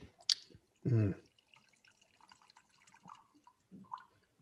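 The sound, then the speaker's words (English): A sharp click, then a short burst of a drink being poured from a small sampler bottle, followed by a few faint drips and quiet murmuring in the background. “That was a nice small pour. It sounded great.”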